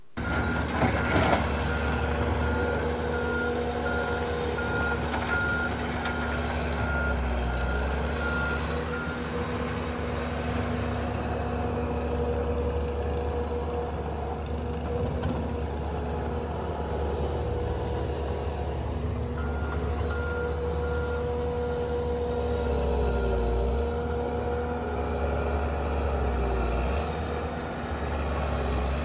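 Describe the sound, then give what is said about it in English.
Skid steer engines drone steadily throughout, a constant low rumble with a humming tone and occasional rising whine as they work back and forth preparing a building pad site for a new television studio and ministry headquarters. No voices are heard. “Well, those skid steers were moving like busy bees back and forth for days upon end, long hours, just work, work, work.”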